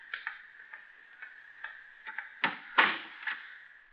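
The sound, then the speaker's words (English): A door is pulled shut behind people heading down steps into a dark cellar: a run of small rattling clicks and taps, then a couple of louder, fuller knocks as it settles closed, with no voices. “Now you go first. I'll close the door after me.”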